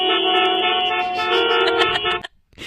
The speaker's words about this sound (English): Oh, wait. Play the traffic horns one. We should play that one, too.